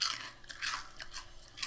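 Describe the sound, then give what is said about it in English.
Crisp, crackly crunching of chicken Twisties, a chicken-flavoured puffed snack, being chewed, several sharp bursts in an uneven rhythm with no talking. “The chicken twisties, not so much. Really? I'm going to try it right now.”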